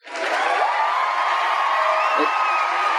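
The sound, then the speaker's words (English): A crowd cheers and whoops loudly and steadily for the full few seconds, a dense wall of voices with scattered high shouts rising above the roar, cheering for a guest who has just won. “The crowd is happy for you.”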